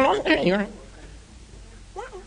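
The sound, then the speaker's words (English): A voice imitates the beeps of R2-D2, the Star Wars droid, with a quick burst of warbling, pitch-sliding chirps. It then falls quiet before one short chirp near the end, clear. “That was, I believe that was an attempt of, an R2-D2.”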